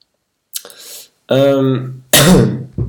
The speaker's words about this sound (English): sorry for the cough, by the way, but I've been dealing with it with like a month and a half now. It's really annoying.